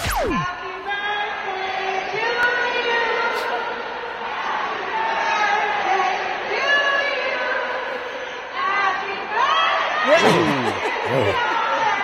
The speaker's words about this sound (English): And then, of course, …, came on and they kind of yelled happy birthday at her.